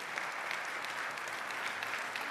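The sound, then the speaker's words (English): Sustained applause from an audience cheering a police captain's honor as Law Enforcement Officer of the Year, a dense, steady wash of many hands clapping at an even level for the whole stretch, with no voices standing out. “Now, here's why they're clapping.”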